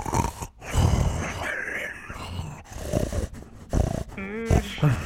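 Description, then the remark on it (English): A man snores loudly and raucously in his sleep at 3 o'clock in the morning, with rasping, growling breaths broken by whimpers and grunts in irregular bursts, with no talking. “Bickerson lies tense and sleepless in the dark as poor husband John, victim of raucous insomnia, or whimpers malady, reaches a climax during an acute attack of his strange ailment.”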